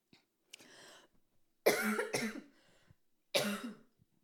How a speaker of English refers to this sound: This is not, if you're a first time listener, I promise I don't usually cough like this. I don't want to redo this episode. So I'm really sorry.